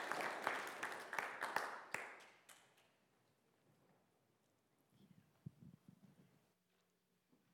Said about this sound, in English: Can we just give her a round of applause as she comes forward and shares all that God has been doing in her life?